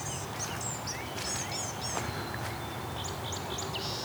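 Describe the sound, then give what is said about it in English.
Blue-gray gnatcatchers in a hydro corridor give a busy series of thin, high, buzzy calls, several birds overlapping, over a steady hiss of outdoor background noise with no talking. “These gnatcatchers are being loud. Let's go listen to them for a second.”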